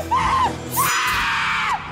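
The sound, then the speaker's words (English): A loud, shrill human scream rings out, rising and wavering in pitch before breaking off, followed by a second sustained high-pitched shriek over a noisy background. “Is that somebody screaming?”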